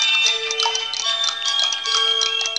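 A busy clutter of wooden carved clocks ticking at once in a shop, their crisp, overlapping clicks forming a steady chatter, with faint sustained chiming tones ringing underneath.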